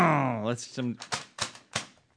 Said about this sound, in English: I like to pretend I have a piece of paper here. Yes. I don't know why I'm doing that today. You must be listening to too much Rush. He does that all. Does he really? Paper shuffle. He says shuffle.